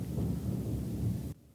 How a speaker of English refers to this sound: You guys hear that? It's thunder. Some shit always happens when we do like creepy stuff.